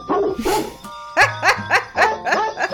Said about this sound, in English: It is not Christmas without jingle bells and barking dogs.